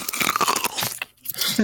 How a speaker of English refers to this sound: You guys want to hear a good crunch?